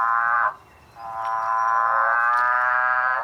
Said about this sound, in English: I really love the sound of revving motorbike frogs.